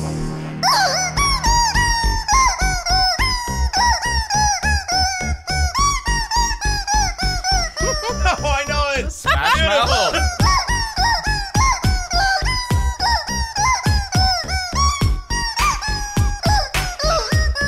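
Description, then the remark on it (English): A rubber chicken toy, plucked by a man, squeaks loudly in a rapid, rhythmic run of squawks, played like an instrument with pitch bends and bouncing melodic phrasing, continuous for the whole stretch. “He plucks that rubber chicken like nobody before.”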